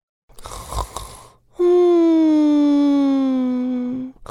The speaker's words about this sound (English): The sound of the dung beetle snoring became louder and louder. The dung beetle's snores were even louder than the thunder.